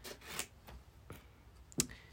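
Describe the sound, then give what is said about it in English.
A handful of quiet, crisp scissor snips at irregular intervals, with one sharper cut near the end, set against a soft background hush and no talking. “Let me know when you need the scissors again.”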